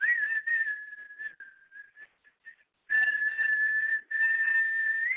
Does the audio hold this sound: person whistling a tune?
yes